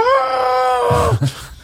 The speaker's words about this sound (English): I think that was general panic. That sounded like a scream of panic, though.